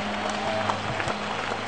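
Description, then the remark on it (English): A church audience, including those in the overflow, applauds for Jesus after a prayer. A dense wash of clapping from many hands fills the space evenly, with a low electrical hum beneath it. “In the overflow, give your hands for Jesus.”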